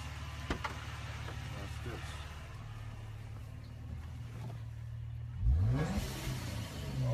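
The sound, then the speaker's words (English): A twin-turbo car engine idles with a steady, low droning rumble, then revs sharply near the end, its pitch sweeping upward in a loud burst before settling back. “I added a twin turbo engine to your joint, and I didn't even have a twin.”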